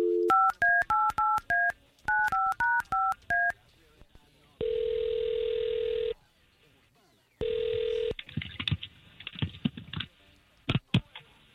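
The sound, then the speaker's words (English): Morning radio show hosts from station K92.3 place a phone call to a man: a quick run of touch-tone dialing beeps, two bursts of rapid keypad tones, followed by long ringback tones on the line and then some clicks and handling noise of the call connecting. “All we're going to try to do here is get him on the phone and see if we can't talk to him.”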